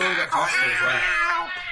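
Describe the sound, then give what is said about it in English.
A cat jumping around lets out a loud, high-pitched, drawn-out yowl that wavers in pitch, sounding strained, like an aggressive caterwaul or battle cry lasting a second or two. “I see a weird cat jumping around? So yeah, you can hear this sort of like high pitched noise, battle cry.”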